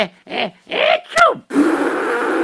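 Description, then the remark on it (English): Someone blows their nose: a few short grunting, snuffly bursts, then one loud, sustained, hissing honk that runs about a second and cuts off abruptly. “I have to blow my nose.”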